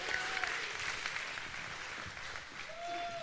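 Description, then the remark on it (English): A crowd applauds steadily for a man who has just shown a stretch, a dense wash of clapping that stays fairly loud and even for the whole stretch, with a few faint whistles or cheers poking through. “All right, give him a round of applause.”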